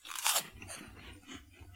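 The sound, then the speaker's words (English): Flaming Hot Cheetos being crunched: one loud, sharp bite followed by a run of softer, crackly chewing crunches in an uneven rhythm, with no talking. “Meanwhile, we've just had a little break, and it's Cheetos time.”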